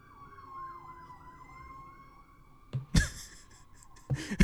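police siren

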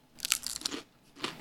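crunching

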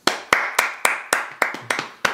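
hand clapping

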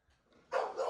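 dog barking

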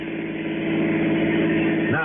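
car engine driving off

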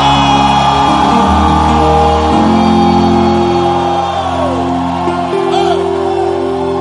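audience shouting and whooping

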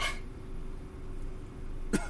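coughing

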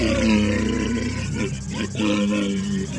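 monster roaring

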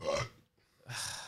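loud burp

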